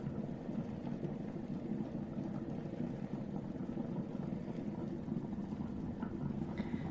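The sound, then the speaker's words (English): A steamer runs continuously, distributing steam across a hat to soften its fibers, giving off a steady, rushing hiss with a low rumbling undertone that holds at an even level for the whole stretch, with no talking. “Distributing the steam across the hat.”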